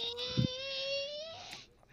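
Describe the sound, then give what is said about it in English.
A young boy lets out one drawn-out, strained roar in imitation of a lion, holding a high voiced tone that creeps slightly upward for over a second before breaking off and fading. “I'm pretty sure you heard his lion roar”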